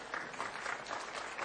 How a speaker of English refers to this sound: a clap for a birthday